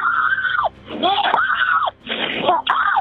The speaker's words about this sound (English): She screams.